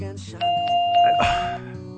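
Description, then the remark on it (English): A doorbell sound effect chimes with a bright, sustained ding-dong tone that rings for about a second before fading, with a low background murmur of voices underneath. “I don't need a damn sweetness bell.”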